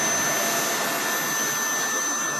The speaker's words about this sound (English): I'm making a lot of funny jokes. You just can't hear them because of the vacuum cleaner.